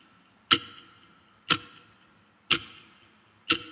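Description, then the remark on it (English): A clock ticks steadily, four crisp ticks spaced exactly one second apart, each with a brief metallic ring, with no other sounds or voices around it. “Once a year, the clock speaks. Listen.”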